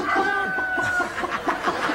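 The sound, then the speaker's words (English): A bird clucks, starting with a drawn-out tonal note and then breaking into a quick run of short, repeated clucks at a fairly steady, moderately loud pace. “It is a goody-toddy bird, the only bird that keeps score.”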